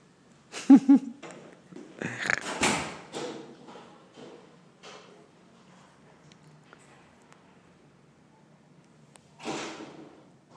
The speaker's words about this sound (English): Jeez, what a big banging door.